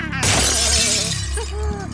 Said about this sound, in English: broke a large mirror hanging on the wall, shattering it into a thousand pieces.